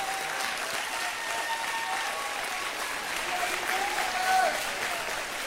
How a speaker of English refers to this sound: So I just want you to stand for a minute and focus your applause on the audience of one just for a minute. Amen. Give him praise. Give him praise this morning.